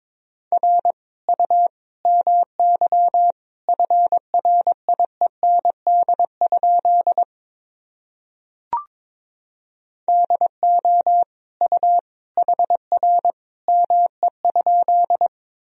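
Morse code sentences built from the top 300 words and abbreviations, sent at 22 words per minute as a steady mid-pitched tone keyed into short dits and longer dahs. The characters come in bursts, with a gap and a single faint click in the middle.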